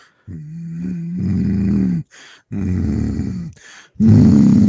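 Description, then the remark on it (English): A person imitates a loud cat purr with three long, throaty rumbling bursts, separated by short breathy pauses, the last one strongest. “And then … does the weird thing where he's like, if I was a cat, I'd be purring so loud.”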